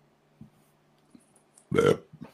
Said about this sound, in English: That was a good burp, by the way. That was like a Mick Foley burp. Good job.